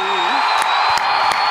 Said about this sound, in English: There he is. Wait, here he is, everybody. Thunderous applause.